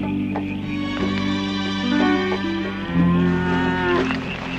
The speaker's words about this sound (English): Oh, look! It's a cow! Just like we have back home.